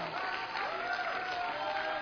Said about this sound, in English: Now let's clap our hands before the Lord. Hallelujah. Hallelujah.